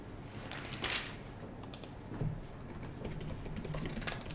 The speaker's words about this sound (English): So I'm sitting here. You can probably hear me typing on my in my notes because I just had this thought while you were reading that.